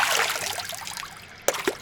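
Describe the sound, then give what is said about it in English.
Running water trickles steadily into a bathroom sink, then two brief, sharp splashes land near the end as a man splashes water on his face. No one speaks. “He steps into his bathroom, and we can hear him splashing water on his face.”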